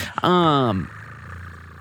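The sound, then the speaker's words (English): A person briefly imitates a cat purring: a single short, loud, buzzy voiced rumble lasting about half a second, followed by quiet background. “No, but they can pick up me imitating her purring.”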